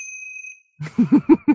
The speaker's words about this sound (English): Oh, give yourself a ding. You sure? Yeah, you earned it.